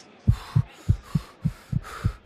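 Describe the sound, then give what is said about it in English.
A fast heartbeat, quickened by nervousness before the start of a race, thumps steadily in deep lub-dub pairs, about four beats in quick succession, with a soft hiss behind it and no voices. “Before I start the race, the nervousness is making my heart beat fast, and it's making me want to breathe fast, so I have to slow down my breathing.”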